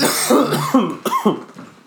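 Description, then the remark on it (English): A bout of harsh, throaty coughing, three or four rough bursts in quick succession that trail off into raspy throat clearing, with no talking. “Nah, I'm coughing.”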